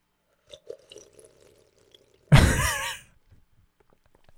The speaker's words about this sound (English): No, what are you doing? I'm drinking my drink.